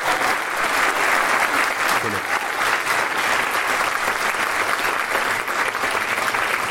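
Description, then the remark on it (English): Sustained audience applause for guest Kelly Hoppen fills the entire stretch, a dense, even wash of many hands clapping at steady loudness without pause or fade. “Please give Kelly a round of applause for so far.”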